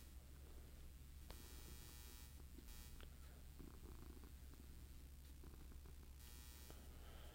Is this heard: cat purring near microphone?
yes